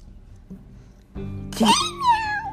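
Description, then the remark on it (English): A child's voice imitates a cat with a single drawn-out meow that rises and then slides down in pitch, fairly loud after a moment of quiet background. “Oh, you're a kitten. Oh, that explains it, why there's a meow in it.”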